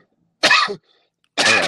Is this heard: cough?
yes